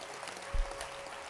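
A crowd claps together in a steady, dense patter like rain, with one dull low thump partway through. No one speaks over it.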